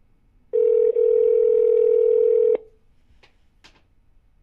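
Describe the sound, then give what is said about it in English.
A telephone call tone, placed to a woman's phone, sounds loud and steady for about two seconds with a tiny break, then cuts off, followed by a couple of faint clicks in near-silence. “You should call her.”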